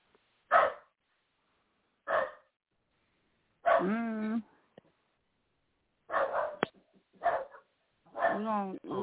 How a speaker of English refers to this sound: We're gonna shut the dog up.